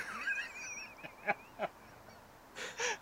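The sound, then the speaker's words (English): A bird, called a loser bird, gives a honking call alone: a wavering cry followed by a few short, abrupt honks and a final pair of harsh squawks, moderately loud. “There's a real thing, called a loser bird. Well, that's the sound it makes.”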